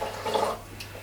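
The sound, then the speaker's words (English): A short splash of a very purple 14.5% drink being poured into a glass, a brief gurgling rush that quickly tapers off, followed by a faint clink or drip near the end. “So I'm just seeing, I'm pouring it now. It's pouring, again, a very nice, definitely lighter than what we've had.”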